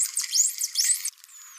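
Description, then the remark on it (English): High-pitched whistles of a male dolphin from Western Australia: a rapid series of loud, looping squeals that rise and fall in pitch for about a second, followed by a fainter, thin whistle trailing off. “Here's what one of those whistles sounds like.”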